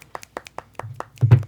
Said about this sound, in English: Can we get a small round of applause with your fingers, please?